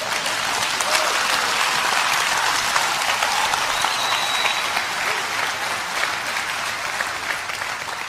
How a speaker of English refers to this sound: All right, I got to hurry. I hope I wasn't rude cutting off your applause,